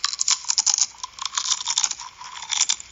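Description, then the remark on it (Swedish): Dense crunching and crackling of potato chips in an ASMR recording, with rapid brittle snaps running continuously for the whole stretch and no voices. “Chips.”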